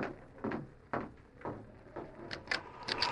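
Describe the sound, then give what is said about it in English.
A house door is handled and swung open during a storm, with a series of wooden knocks and scraping creaks over about three seconds and no voices. “Then stop outside, Kimasabi. I'll go to the door.”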